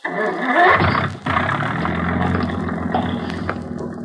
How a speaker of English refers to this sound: start that engine. Oh, yes, sir.